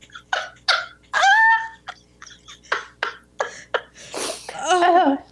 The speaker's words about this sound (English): Gesundheit. Ausgezeichnet.